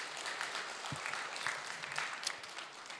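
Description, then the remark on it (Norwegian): A crowd applauds steadily, many hands clapping in a dense, continuous wash of claps with no voices standing out. “Ja, gi han en god applaus.”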